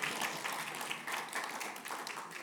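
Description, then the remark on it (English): A crowd applauds steadily, many hands clapping in a dense, continuous patter that holds at an even level from start to finish, with no voices standing out. “Give yourselves a big round of applause.”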